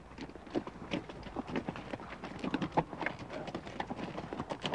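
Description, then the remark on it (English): Mule or horse hooves clip-clop steadily along a dirt canyon trail, many overlapping hoofbeats in a loose walking rhythm, moderately loud, with no one talking. “When you meet mules or horses, stop and follow the wrangler's instructions.”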